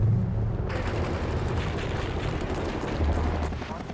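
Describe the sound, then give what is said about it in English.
Helicopter rotor blades thump through a dense, roaring wash of rapid small-arms gunfire, loud and continuous for the whole stretch with no pauses, chaotic like a battle scene. “We're getting lower and lower on ammunition, and then I hear the blades of a helicopter.”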